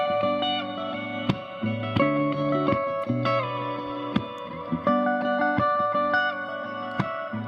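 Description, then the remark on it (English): A Fender electric guitar on its middle pickup plays clean-toned ringing chords and single notes, each strum sustaining with a soft echo and reverb, played steadily with no voices. “I just love Fender clean tones.”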